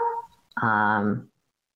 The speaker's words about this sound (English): Sorry, that is my doggy. He's very cute, but he's also very loud.